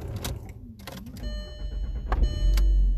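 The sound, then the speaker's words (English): A car engine sputters and dies out amid mechanical clicks and a thin steady whine, ending in a low, uneven rumble. “Oh, my car died.”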